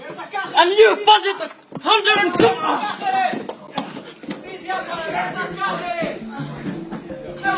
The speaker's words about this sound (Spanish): Un par de hombres agarran a los activistas y comienzan a empujarlos hacia una puerta de salida. Los manifestantes contraatacan. Uno es empujado con fuerza contra el marco de una puerta cuando sale de la habitación.